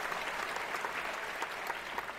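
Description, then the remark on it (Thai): A steady burst of applause praising a cinema staff member's service at Major Rayong, many hands clapping at once in a dense, even patter that stays at a constant loudness throughout, with no voices standing out. “โอ้ดีมากเลยปรบไม้ปรบมือหน่อยโอ้จิตใจบริการแบบนี้น่าชื่นชม”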